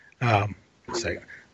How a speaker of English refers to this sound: Sorry, had a cough.